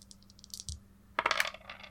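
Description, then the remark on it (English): Dice clatter and rattle across a hard table during a tabletop role-playing game, rolled as double damage dice for a critical hit. A few light taps come first, then a burst of quick tumbling clicks that settle and fade. Fairly loud, with no voices. “So what do we roll for crits again? Double damage dice.”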